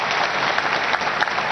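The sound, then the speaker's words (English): A crowd applauds steadily, many hands clapping together in a dense, continuous patter that stays loud and even throughout, with no voices rising above it. “Clap for him.”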